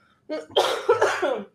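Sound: cough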